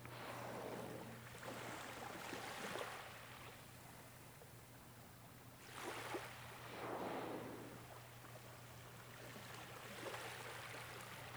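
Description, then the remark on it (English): A whale breathing at the surface near a boat: two or three loud, breathy whooshes of exhaled air, spaced a few seconds apart, over a low steady engine hum and lapping water. “After a few moments, you hear it breathing on the surface again.”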